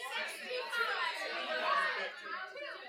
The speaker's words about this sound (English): Should we have them guess? Everybody just shouts out a percent at the exact same time. Yeah, shout a number. How many people would show up for this?